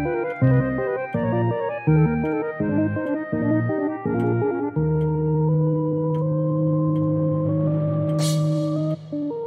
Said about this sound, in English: With the sound of the cuckoo, you know that it is time for the Clockwork Cabaret.